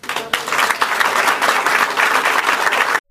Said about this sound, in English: Handguns. You heard him say it, handguns. And he got applause.